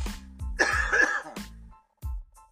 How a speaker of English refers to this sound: Now, I have to cough, excuse me.